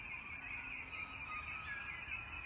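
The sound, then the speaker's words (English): Soft birdsong fills the air, a steady weave of high chirps and trills over a low outdoor hum, with no one talking. “Instead, I chose to take advantage of the bird song.”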